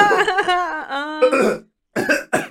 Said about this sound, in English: No, don't start the coughing.